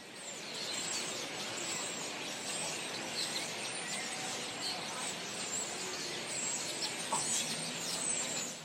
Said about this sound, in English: but this clip, rather than in the forest, this clip was actually in downtown. There was just this one tree downtown outside the candy store with a whole flock of birds, and they were all very clearly mating. So this is that recording.